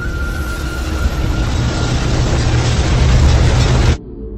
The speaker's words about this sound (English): And then, with a deep, thunderous groan, the bridge tears itself in half.